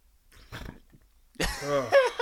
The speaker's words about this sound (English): I'm burping over here.